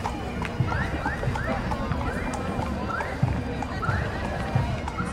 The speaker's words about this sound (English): The hooves of horses, followed by a unicycle.